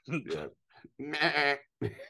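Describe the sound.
A voice lets out a string of loud, harsh goat-like screaming bleats, a few quick wavering cries with a longer drawn-out one in the middle, with short gaps between.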